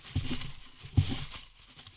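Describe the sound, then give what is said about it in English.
Printed, individually cut paper slips rustle and crinkle inside a bucket, with a few louder shaking bursts at roughly one-second intervals, fairly quiet, no talking. “You want to hear them? Yeah, you want to hear them? Here. Full of pieces of paper.”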